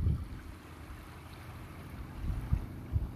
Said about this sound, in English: The cool ocean breeze against your warm skin. The sounds of the waves gently rolling on the shore.